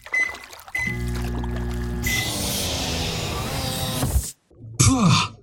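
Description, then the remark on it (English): A low mechanical hum starts up, then a loud rush of water draining from a diving bell airlock pours steadily for a couple of seconds before cutting off abruptly, followed by a short vocal grunt. “Yeah, sorry about that airlock, mate. I know it's a bit cumbersome, but we've had a little bit of flooding here this week in Melbourne.”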